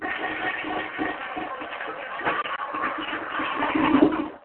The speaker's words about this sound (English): Well, I guess someone flushed that toilet.